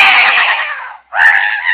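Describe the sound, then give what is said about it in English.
A cat screeches loudly, one long piercing yowl followed after a brief pause by a second, shorter shriek. No one speaks. “What? That cat. Shut up, blast you.”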